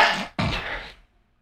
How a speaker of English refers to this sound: I don't consider myself a dad, other than my sneezes and the bod. Dude, got some great dad sneezes. Because me, I'm like, it's very sneezy. It's not high pitched. It's just sneezy. It's not yelly.